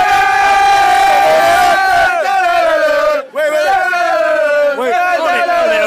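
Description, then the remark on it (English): A large crowd of football fans chants a song about the player Hotter running down the wing, in unison, loud and sustained, with rising and falling melodic lines repeating over about six seconds. “So listen, exactly who are you singing about here?”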